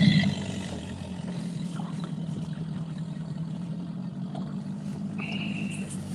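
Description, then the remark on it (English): A small, spacious boat's engine runs at a steady, droning idle, its low rumble continuous from start to finish, with faint water and hull noise above it and no talking. “In the spacious boat with plenty of room.”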